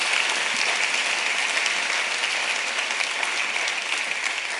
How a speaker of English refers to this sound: Would you give the Lord a round of applause? Would you do that?